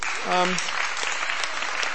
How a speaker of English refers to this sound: Do you want to give him a round of applause?